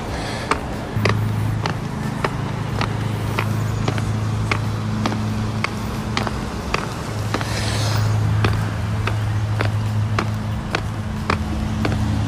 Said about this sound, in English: Looks like that car is stopping. Oh, they're stopping for a stop sign, okay.